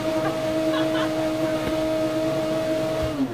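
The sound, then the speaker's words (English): A kitchen blender runs steadily, its motor giving off a constant droning whine with a pair of sustained tones over rough, whooshing noise, loud and unbroken for the whole few seconds. “Can you hear us? If not, it's just the blender.”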